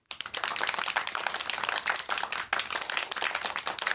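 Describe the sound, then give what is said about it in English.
Steady applause from a crowd, a dense crackle of many hands clapping at once that holds a fairly even loudness for several seconds with no voices over it, a round of applause for the sponsors of a WKRM Radio show. “How about a round of applause for the fine folks who sponsor our radio show each week here on WKRM Radio.”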